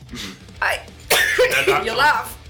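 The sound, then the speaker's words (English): Harsh coughing comes in a couple of loud bursts, with a rough, throaty sound that breaks up and sputters over a couple of seconds. “I'm laughing at your coughing.”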